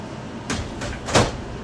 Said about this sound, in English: I think that door was kid proof. They can't fucking shut it, but they can get it open.